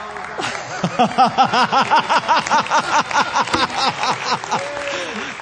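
An audience breaks into sustained applause as an item is unveiled and brought forward, dense clapping mixed with whoops and laughter-like cheering voices, holding steady and fairly loud for about five seconds.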